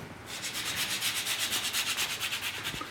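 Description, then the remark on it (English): Nutmeg being grated over a strained, foamy egg-yolk drink in quick, steady back-and-forth strokes, a dry rasping scrape repeating about six times a second, fairly quiet and with no voices over it. “Got the nutmeg there.”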